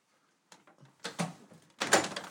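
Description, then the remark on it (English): A closed door rattles and thumps in its frame as a big cat tugs at it repeatedly, with short bursts of scraping and banging, moderately loud, no voices. “This is a big kitty, man. Watch this, she's gonna fucking pull out the door now.”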